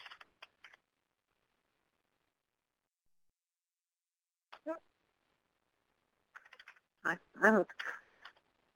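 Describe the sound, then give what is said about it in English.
Computer keyboard keys clack in a few short, quick bursts with long quiet gaps between them as someone leans on the keyboard, and a brief murmur of voice shows up in the middle and near the end. “Must have leaned on the keyboard there.”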